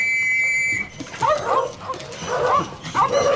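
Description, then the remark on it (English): Several small terriers yap and bark in quick, overlapping bursts, high-pitched and excited, while hunting rats. A steady whistle-like tone sounds briefly at the start. “These are your terriers.”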